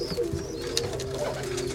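Pigeons coo in a low, throaty, continuous murmur, fairly steady, with several birds overlapping and a faint higher chirp now and then in the background.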